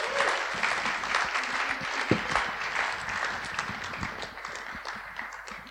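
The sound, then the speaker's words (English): An audience at a gathering applauds steadily, a dense patter of many hands clapping at once, sustained throughout with no one speaking over it, welcoming a speaker coming up to give the next message. “In case you don't know me and you have no idea why people clap for me, which I don't,”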